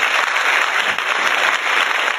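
Dense, steady crackling noise spread across the upper range: paper crumpled continuously by a Foley artist to imitate canned live studio audience applause, fairly loud with no pauses and no voices.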